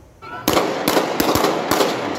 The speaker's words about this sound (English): A frightening experience for people living near Princess Avenue and Hastings Street, waking up to the sound of gunfire.